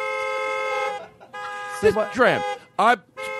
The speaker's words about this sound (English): And that's her car. Yeah. I thought she was like 8 and she had a little toy. No. And she drives an 86 Buick, but she just had the horn changed.